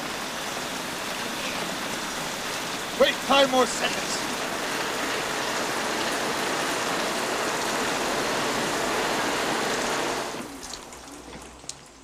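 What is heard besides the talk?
pouring rain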